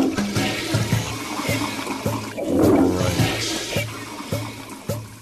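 A toilet flushes up close, a loud rushing, gurgling swirl of water that swells to a peak midway and then drains away, with no talking.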